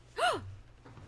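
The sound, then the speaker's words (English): A sharp, exaggerated gasp of mock surprise with a breathy, voiced rise and fall, lasting a fraction of a second, fairly loud, then fading into quiet room tone. “Everyone gasp and go, oh, my God.”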